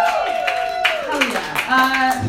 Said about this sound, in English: I'm assuming we're all ladies. Clap it up, ladies, for being here. Hell yeah.